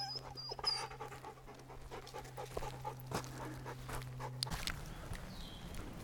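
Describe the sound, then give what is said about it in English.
A dog whines in high, thin cries and pants steadily at a clearing on a hiking trail during a rest break, with footsteps and outdoor rustling underneath and a low steady hum through most of it. “As usual, he starts crying because he doesn't want to stop.”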